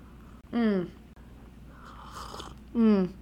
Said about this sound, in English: Okay, I'll stop sipping into the mic, but I'm a fan.